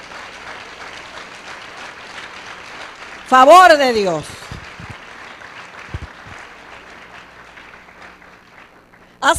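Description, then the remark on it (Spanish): Steady, dense applause from a church audience, given for God's favor, fills the whole stretch, while a man's voice shouts loudly over it for a moment before the clapping carries on. “Dale un aplauso más grande.”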